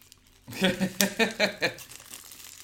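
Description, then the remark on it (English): Plastic wrapping crinkling as a game package is torn open, about six quick rustling bursts in an uneven rhythm over a second, then settling into quiet. “Gentle rustling plastic.”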